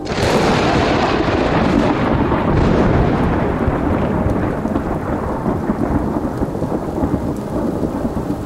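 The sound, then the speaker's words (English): A heavy downpour roars steadily and loudly throughout, dense, with a deep rumbling underneath like rolling thunder. No voices are heard. “In seconds, a downpour began, water falling by the bucket.”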